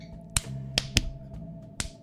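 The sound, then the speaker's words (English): Four sharp hand claps in an uneven rhythm, two close together in the middle, each a crisp, bright smack standing out over a low, steady humming background. “Stop clapping your hands and show him what we do.”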